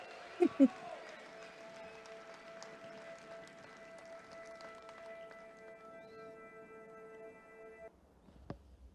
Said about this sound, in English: I mean, you could hear the crowd cheering, which is the significant thing.